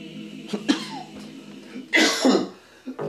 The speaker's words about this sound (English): Got me coughing that out.